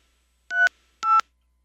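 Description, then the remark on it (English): Two short, bright phone keypad tones pressed in quick succession to enter a voicemail password, each a clipped dual-pitched beep about half a second apart, heard alone and clearly in a quiet background. “Please enter your password.”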